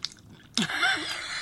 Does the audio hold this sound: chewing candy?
yes